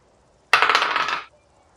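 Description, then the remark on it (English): A brisk clatter of dice rolled for a perception check in a tabletop role-playing game, tumbling across a hard tabletop, a rapid rattle of small clicks lasting under a second before stopping abruptly. No voices. “Give me a perception check.”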